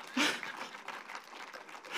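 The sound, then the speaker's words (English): A burst of audience applause, dense scattered clapping that swells at the start and carries on steadily for a couple of seconds. “That is worthy of clapping.”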